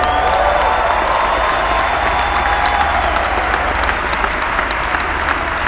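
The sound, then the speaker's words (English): A crowd applauds steadily for about six seconds, a dense, loud wash of many hands clapping at once, with faint cheers mixed into the clatter and no speech over it. “Yeah, somebody clap your hands like that's the truth.”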